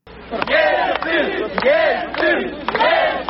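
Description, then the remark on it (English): A large crowd of supporters, about to be addressed by the president of Russia as he strides out of a building, shouts together loudly, with overlapping voices rising in repeated swells of roughly a second each and no clear words. “The democratically elected president of Russia was soon striding out of the building to address a crowd of supporters.”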